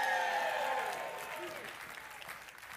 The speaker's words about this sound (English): Amen. I got a couple little hand claps, a holy murmur.